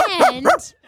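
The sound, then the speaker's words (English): A person imitates a dog, playing Sandy the dog in a performance of Annie, with two quick, voiced woofs in a row, fairly loud, with a brief whine-like tail after the second bark. “will be playing the role of Sandy the dog.”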